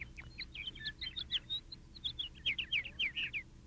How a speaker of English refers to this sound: Let's say a scene takes place in the country. Then we want to have the sounds of birds, so you get the idea that you're walking down a country lane, for instance.